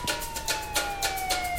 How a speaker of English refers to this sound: And I hear sirens in the distance.